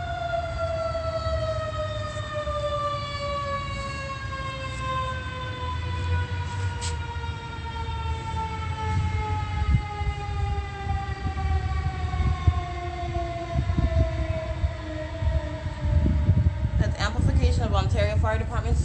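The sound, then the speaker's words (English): A loud, sustained fire department siren wail at 7:15 a.m. drones steadily for the whole stretch, its pitch sinking very slowly, over a rumbling background, with a brief wavering flutter near the end. “7:15, that's the fire department sirens.”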